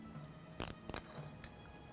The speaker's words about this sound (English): If you like the look of things, you can start tightening up those zip ties.